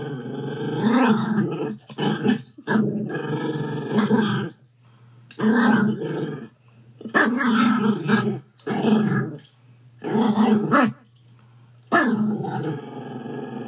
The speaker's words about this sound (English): That's apparently Yorkie for "Can I talk to the manager?"